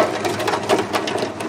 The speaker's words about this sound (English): They lean over the edge of the boat and dump its contents into a holding tray.